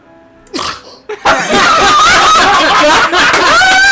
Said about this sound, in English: I think I'm about to sneeze. Okay, everyone shut up.